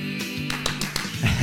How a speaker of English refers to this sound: Had to clap.